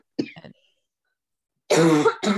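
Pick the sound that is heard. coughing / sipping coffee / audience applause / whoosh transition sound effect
coughing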